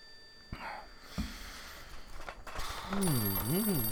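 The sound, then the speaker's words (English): A telephone rings through the line on a call to New China, dialed from its menu, near the end, a loud warbling electronic tone that rises and falls repeatedly, after a stretch of quiet rustling with a few faint bumps. “Just put the phone to your ear. Shh, it's ringing.”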